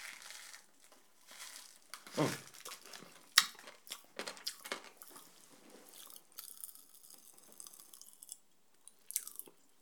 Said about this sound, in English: Oh, not Pop Whiz. Fizz Whiz. Super loud popping action. But there's only one thing for it, you know. It's hair of the dog, so I'm going to have some more.